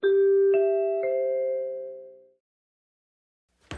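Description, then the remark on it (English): The three-note NBC network chimes ring out clearly on their own, each tone struck about half a second apart, then sustaining and fading away before a short burst of noise at the end. “Let's hear those NBC chimes and get on the road.”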